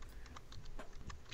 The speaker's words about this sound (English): Sorry, I'm typing in one hand and not listening with the other.